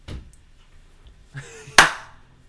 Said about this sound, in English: That was a much worse slap. That was like a golf clap.